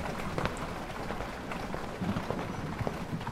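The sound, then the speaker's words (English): Heavy hail pelts down in a dense, continuous clatter, with sharp individual impacts popping out of a steady roar of strikes on a surface. “That hail sounds brutal.”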